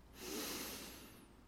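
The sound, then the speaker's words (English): A single deep breath drawn in during a guided meditation, a long airy rush lasting just over a second that swells quickly and then slowly tapers off, with no voices. “Take a deep breath in.”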